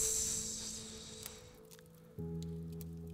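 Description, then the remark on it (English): A soft, steady hiss of wine poured onto hot sauna rocks and sizzling, strongest at first and then fading away, with a low hum coming in near the end. “We pour out a little wine, a little vino for you. Right on to the sauna rocks.”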